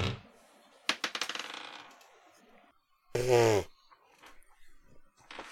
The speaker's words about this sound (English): Grabbing your easy roller dice and giving me a perception check.